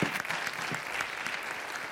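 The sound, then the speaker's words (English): An audience in a church claps steadily in a dense, sustained wash of applause from many hands, even in loudness throughout, with no voices standing out. “Applaud yourselves, because this church does those things and so many more, and ministers in so many ways.”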